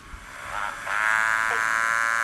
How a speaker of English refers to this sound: Is that what it does? We actually haven't heard it at all. Ah. Yeah, it'll start to call. It's called a motorbike frog.